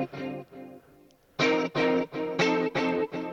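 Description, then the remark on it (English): Lush, 80s-style guitar chords, doubled with a second guitar, shimmer with chorus, reverb and delay: a few softer strums, then a run of six loud, evenly spaced chord hits that ring and wobble, played alone. “And delay it.”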